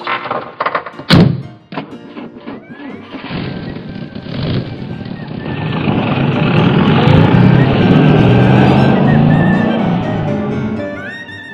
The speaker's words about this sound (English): this is the car taking us to the hotel.